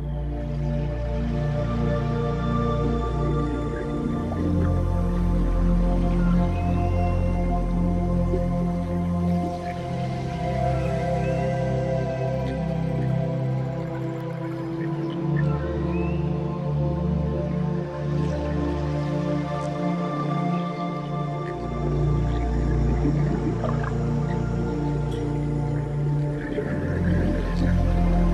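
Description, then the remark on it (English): Long, drawn-out whale calls in a relaxing ambient music piece float over a steady, dense drone, with watery dripping textures and soft bubbling throughout; no one speaks, and the mood is calm and immersive. “Like I did one with whales.”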